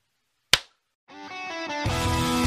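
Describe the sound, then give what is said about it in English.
One sharp, loud hand clap rings out alone and cuts off quickly. After a brief silence, tonal music starts and swells louder. “Let me do the hard clap, and then you bring us back in.”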